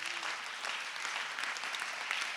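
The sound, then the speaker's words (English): An audience claps steadily in praise to God, a dense, continuous patter of many hands at moderate loudness, with no voices rising above it. “Clap your hands and give him the praise.”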